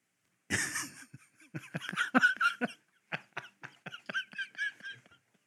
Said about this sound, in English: So we had a little cough debacle here.